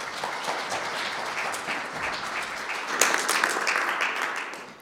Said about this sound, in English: But let's just welcome Chris with a round of applause.